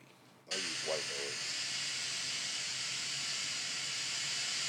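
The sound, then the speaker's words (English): White noise switches on abruptly after a half-second of quiet, then plays as a loud, steady, unbroken hiss to the end, with a brief voice sounding faintly beneath it early on. “I use white noise. Why is it so loud?”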